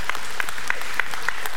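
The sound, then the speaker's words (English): An audience applauds in praise of God, many hands clapping together in a steady, even rhythm, with a dense wash of scattered claps filling the space between the beats. “If you believe that, give God a good hand clap of praise this morning.”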